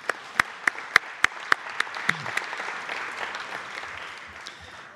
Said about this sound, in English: Hogna Tisoy, the co-founder and board member of Holberg Fondena, who just came from JFK. So an extra applause for Hogna.